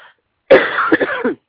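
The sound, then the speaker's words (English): A loud cough erupts after a brief silence, a harsh rasping burst with a few quick hacking pulses and throat-clearing at the end, lasting under a second with no talking. “Excuse me for the coughing.”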